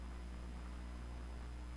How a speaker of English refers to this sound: I can hear static in my headphones. I kind of like it.